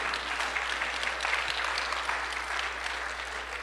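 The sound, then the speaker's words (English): A crowd claps steadily, many hands together making a dense, crackling wash of applause that stays even in volume throughout, with no voices standing out. The clapping is a hand clap of praise to the Lord. “Oh, come on, give the Lord a hand clap of praise if you believe that today.”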